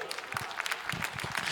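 A crowd applauds in a steady patter of many overlapping hand claps, moderately loud, with no voices standing out.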